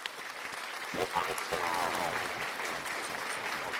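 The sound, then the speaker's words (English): An audience claps steadily for a few seconds to welcome the special guest of the day on a live show, a dense, fairly loud patter of many hands, with a voice or two whooping briefly in the middle. “So let us, you know, say boo, clap, get some hands for our special guest of the day.”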